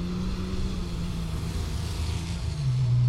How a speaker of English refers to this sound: Probably the smoothest running truck down the track so far with the least amount of hop. As the dirt settles, we're going to see Seth come down to a stop near the 200-foot mark.